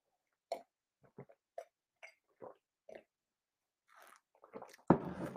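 Someone gulps down about 3 ounces of coffee with cream in a series of short, wet swallowing sounds at an uneven pace, ending with a louder, breathy burst. No one speaks.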